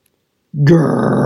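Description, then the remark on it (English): After a brief silence, a voice launches into a loud growl that turns into a sustained rushing whoosh, imitating fire roaring out of a hot air balloon's steel burners and gushing into the balloon. “Grrrr! Whoosh! Fire roared out of the steel burners and gushed into the hot air balloon, forcing it to lurch upward.”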